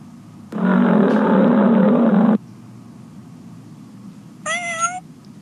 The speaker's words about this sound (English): Daniel was scared as he was put in the lion's den. It was dark and deep, and he could see the lion's teeth around him. Please help me, God. I don't want to be eaten by lions. But the lions growled.